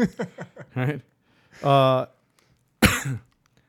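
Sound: cough into the microphone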